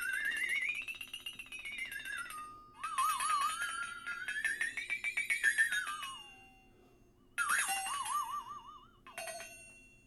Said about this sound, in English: A flexitone, a guitar, or a glass harmonica? A flexitone. You got it right